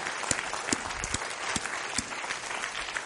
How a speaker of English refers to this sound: And that, Grace Church, is something we're celebrating. So let's give God a round of applause.